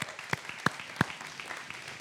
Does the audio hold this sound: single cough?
no